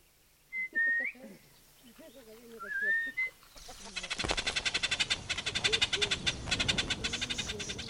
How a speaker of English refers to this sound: The honey guide and the honey hunter communicate back and forth through a series of whistles, and the bird guides them tree by tree to the nest.